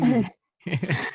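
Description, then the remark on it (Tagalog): A dog barks twice, a loud harmonic bark followed by a brief pause and then a longer, rougher bark. No one speaks. “sorry, wait lang. Aso kasi namin.”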